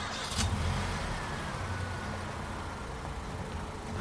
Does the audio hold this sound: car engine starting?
yes